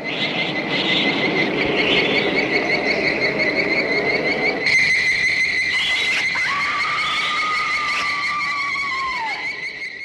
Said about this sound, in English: Oh, and the sound effects. When I first saw it when I was a kid, it freaked me out. You know, that sound that they use for the ants.